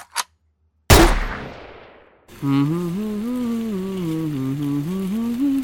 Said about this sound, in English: Leaping out of it and running down an alley. Pulling out a handgun and firing.